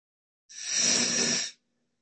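A single deep breath drawn in during a calming breathing exercise, a soft airy rush lasting about a second, clear, followed by silence with no talking.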